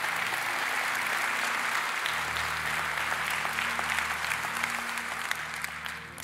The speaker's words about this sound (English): You can clap for that, it's powerful.